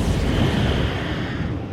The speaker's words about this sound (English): Man, if we had some like cool editing or this would be the time for like some kind of sound effect, an explosion perhaps.